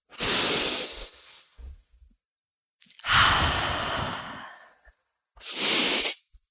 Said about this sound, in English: So, all right, ready? In through the nose. Out through the mouth. Two more.